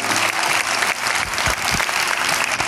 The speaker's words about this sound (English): Come on, give God one more round of applause. Hallelujah.